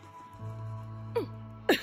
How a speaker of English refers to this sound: Oh, dear. It's a coughing spell. It was tuberculosis, and there was little to be done about it.